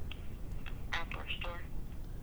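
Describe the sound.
A phone line rings with short electronic tones over steady low background noise, a call being placed to ask a shop about buying ammunition, waiting to be picked up. Faint voices may murmur underneath.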